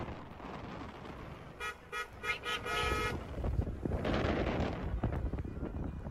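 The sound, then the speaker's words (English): Several car horns honk in quick, overlapping bursts over a steady rumble of engines and road noise from a convoy of Texas Trump supporters following the Biden bus tour in Texas, followed by more traffic roar as vehicles pass. “I love the horns.”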